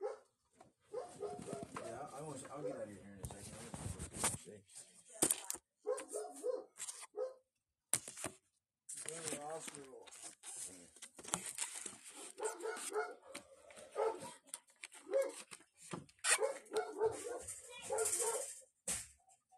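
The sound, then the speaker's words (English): A dog barks repeatedly and loudly at something as people approach, in irregular bursts with short pauses between them, over roughly twenty seconds, with a few higher whining yips mixed in. “He wasn't barking at that until we got closer.”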